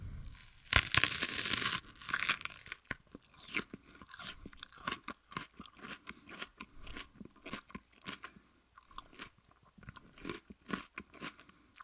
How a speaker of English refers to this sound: here I am with the onion. I'll get real close here, give you the first bite here.